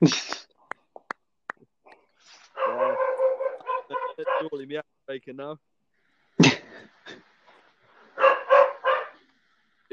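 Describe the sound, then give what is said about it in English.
A dog barks and whines in a few bursts, sounding through and between people talking, with some sharp clicks and taps early on. “Is that your dog, Dean?”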